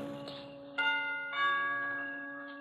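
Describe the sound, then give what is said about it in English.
A doorbell at the front door of a villa rings with bright, resonant chime tones: a steady ring, then two fresh strikes that overlap and slowly fade, heard alone with no voices. “I move across the road, push open the heavy iron gates, hurry up the path to the front door of the villa, and I lean on the bell.”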